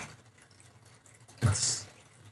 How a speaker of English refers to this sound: It's water.